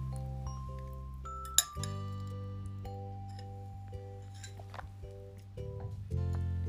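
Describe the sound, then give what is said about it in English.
Water sipped from a glass: one sharp glass clink rings out early, followed by faint small clicks and rustles, all over a steady low hum with no talking. “And I am going to take a sip of water.”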